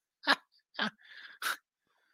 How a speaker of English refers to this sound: excuse me for coughing here.